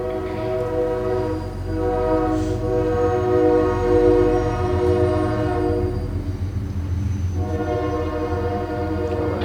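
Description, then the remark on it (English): A train rumbles past, its horn sounding in long sustained blasts over a steady low roar of wheels on rails that swells and then gradually eases off. No one speaks. “But let's wait the train to go by.”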